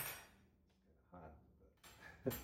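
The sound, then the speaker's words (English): Light clattering of metal cutlery shifting against a freshly run dishwasher rack, ending in a single sharper clink as a knife is pulled free, all at low volume. “Forking a knife out of here.”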